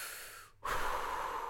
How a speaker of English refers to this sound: Like, the heavier you breathe and the more sound effects you give yourself helps you hold postures, like hard postures longer. Like, if I were to be in plank pose and hold it for like 3 minutes, developing a sound breath like ujjayi going